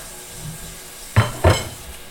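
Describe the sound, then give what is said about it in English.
Two sharp clanks of dishes knocking together in a sink as they are washed, about a third of a second apart, over a quiet background hiss with no talking. “We're getting good sink action on here.”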